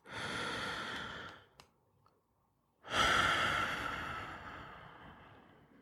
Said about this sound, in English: Take a deep breath, literally right now, wherever you may be.